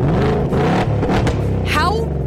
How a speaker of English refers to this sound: You can now annoy your neighbors with the remote rev on the new Mustang. Yes, with a remote, you can rev your engine from the parking lot. Without actually starting your car?